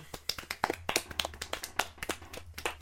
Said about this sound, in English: And can we just like give us a little round of applause for that one?